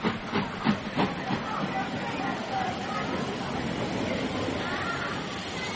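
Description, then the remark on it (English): A crowded steam train bound for Adelsfield at a busy station at Christmas: a few sharp puffs of steam at the start, then a steady, loud hiss with a dense rumble of platform noise and muffled voices. “I want the Adelsfield train.”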